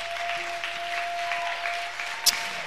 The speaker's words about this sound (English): wants us to clap